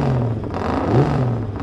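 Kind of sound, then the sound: vehicle, racing motorcycle engine revving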